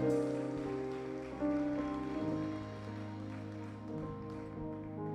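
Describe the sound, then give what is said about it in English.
A church audience claps for God in praise, a dense, steady wash of applause lasting several seconds, with sustained musical chords playing underneath. “Come on, give God another hand clap.”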